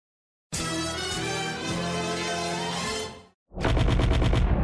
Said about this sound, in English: Blaster fire and explosions fill the alleyway as Wildstrike and Ironhide run. Cannon shots explode overhead and tracer rounds light up the night sky.